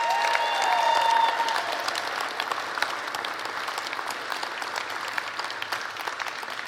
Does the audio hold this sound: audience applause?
yes